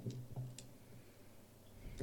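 Dice clatter lightly on a table, a few quick, sharp clicks spaced out over a couple of seconds, quiet, with no one speaking.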